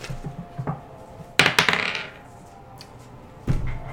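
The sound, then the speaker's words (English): Dice clatter across a hard tabletop in a quick burst of several sharp clicks and rattles, then fall quiet before one more knock lands near the end; the dice are rolled for a medicine check in a tabletop role-playing game. “Did you roll both dice?”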